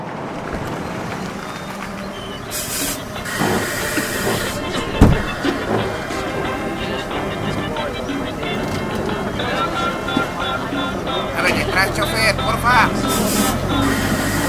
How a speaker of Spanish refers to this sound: No tarda en llegar su autobús.